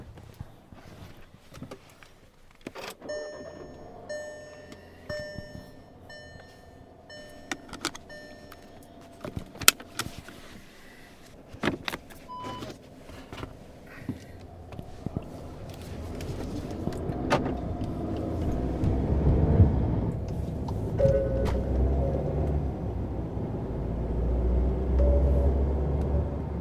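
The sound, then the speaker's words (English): Car keys jingle and clink with a few chimes, then a car engine starts and settles into a steady rumble as the vehicle pulls away and drives, growing louder toward the end. “Grab the car keys in the car. Fire up the Waze app. Let's go.”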